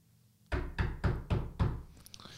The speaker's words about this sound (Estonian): Et koputa sina. Tegelikult ma lihtsalt tegin sulle nagu sound effekti ette ära. Okei, koputa sinna.